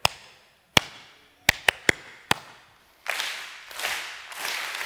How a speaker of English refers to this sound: Now, what I want to teach you in this little illustration is that most of us wait for the clap, and we think the clap creates the rhythm.